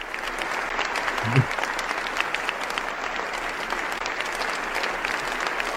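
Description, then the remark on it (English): A crowd applauds steadily, dense overlapping claps forming a continuous bright patter that holds at an even, moderately loud level throughout, with one brief low thump early on. “I think we should all give ourselves a round of applause.”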